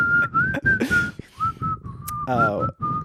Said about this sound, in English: I also thought it was going to say once they joined a group of people also whistling. Everyone's whistling the same. So it's like the Kill Bill.